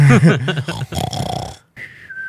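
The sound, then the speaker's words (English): A person imitates a wild boar's mating call with loud, guttural snorting and grunting snore-like noises, ending in a short whistly squeal. “And that is weird, because that actually is kind of what a pig sounds like.”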